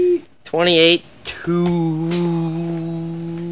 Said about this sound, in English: I just heard a little bird in my ear. I don't know where that came from.